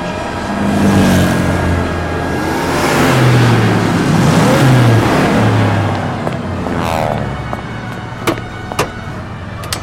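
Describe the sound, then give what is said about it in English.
Six squad cars roar up 8th Avenue with revving engines, loud, their pitch sweeping up and down as they speed by, followed by a few sharp clicks near the end. “I've seen six squad cars roaring up 8th Avenue.”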